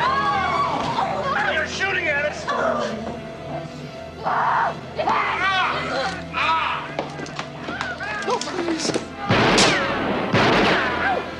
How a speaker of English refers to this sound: I've been shot! Come out! The door is open! Why are you shooting that thing at us? To get you out! You know, you could have killed us! I could have been killed!